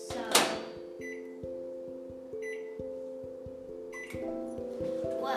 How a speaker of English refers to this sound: And using the microwavable bowl, you're obviously gonna put it in the microwave, and I'm gonna start with 15 seconds.